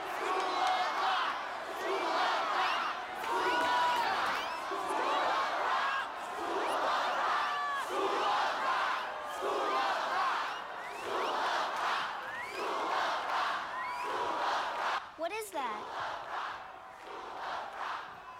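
A large crowd cheers and chants for an encore after a rock band's show, in a steady, pulsing rhythm, voices swelling together roughly every second and a half, loud and continuous throughout, with one sharp whistle rising above it near the end.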